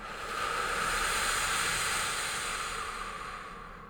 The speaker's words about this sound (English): Breathe in. And purse your lips as you exhale and breathe out. Breathe in. Breathe out